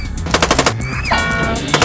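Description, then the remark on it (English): Loud machine gun fire aimed at the Grinch rattles off in rapid, evenly spaced bursts, broken midway by a quick falling whistle-like slide before the rapid firing picks up again. “He's slunking too fast for them to shoot.”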